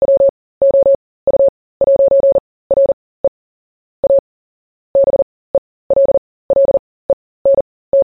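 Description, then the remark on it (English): A single steady tone pulses on and off in short and long beeps, tapping out a listener's name in Morse code in uneven groups with brief silences between, clear with no voices. “Oh, and after being a string of symbols last time, Ivor Hewitt changed his name to Morse code. So here that is for him.”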